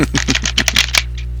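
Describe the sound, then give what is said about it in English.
A quick riffle of playing cards being shuffled, a rapid flutter of crisp papery clicks lasting about a second, then a soft trailing rustle over a low background hum. “Except with card shuffles.”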